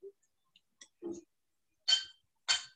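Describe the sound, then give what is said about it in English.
Glasses clink together twice in a toast, two bright taps about half a second apart, preceded by a few faint knocks and shuffles, with no talking. “I'm going to clink with you. Here, happens. Put your glass close.”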